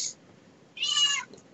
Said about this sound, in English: Cat sounds pissed. Yeah, sorry, my cat is. She heard me imitating Yu-Gi-Oh, and she started to wonder if I was all right.